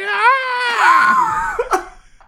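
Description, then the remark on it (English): A voice imitates the horn of the Blue Eyes White Train with one sustained, high, wavering hoot that droops in pitch, then ends in a short breathy burst. “That's just the noise that the horn makes.”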